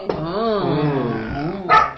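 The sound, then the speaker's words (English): An angry dog growls with a long, wavering snarl that rises and falls for nearly two seconds, then ends with a single short, sharp bark, all fairly loud. “The dogs are mad.”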